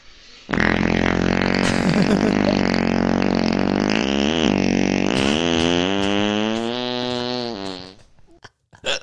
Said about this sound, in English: It says this is an original sound. That's the part that scares me. That's a real fart. And that was probably his real voice. That's a real fart, my boy.